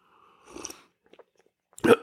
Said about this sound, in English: Let me get another sip of that wonderful, succulent, bold, delicious beverage.